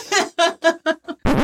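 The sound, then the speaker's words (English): A fart breaks out in five quick buzzy blasts, each shorter and softer than the last, ending in a sudden burst of harsh, noisy rustle. “So I just wanted to get this flat tire out of the way.”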